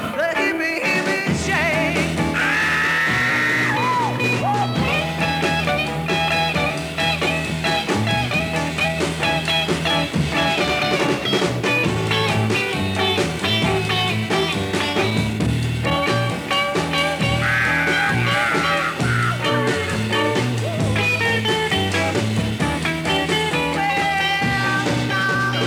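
A loud, driving rock song plays with a full band throughout, as a raw, screamed lead vocal cuts through high above the steady beat and guitars.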